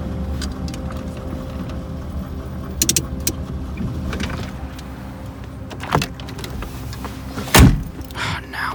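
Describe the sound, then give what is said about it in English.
A car engine rumbles steadily as the vehicle, its lights off, slows and pulls over to a stop in a warehouse district, with a few sharp mechanical clunks and a louder thump near the end. “Pull over right there.”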